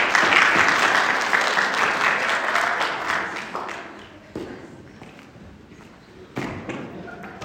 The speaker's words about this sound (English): You guys, thank you. Everybody give them a round of applause for playing.